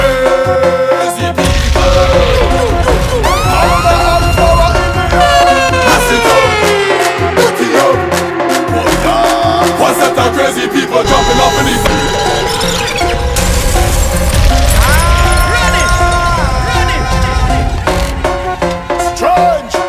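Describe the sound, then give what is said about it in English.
A loud, energetic Vincentian song plays continuously, with a driving beat, dense layered synths and swooping pitch glides, filling the whole stretch without any talking. “somebody say they want the Vinci tune. So right now we going Vinci.”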